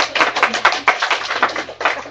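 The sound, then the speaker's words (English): An audience claps in thanks, a dense, steady patter of many hands overlapping into a continuous bright crackle that holds at a fairly loud level, with a low hum underneath. “We have clapping going on.”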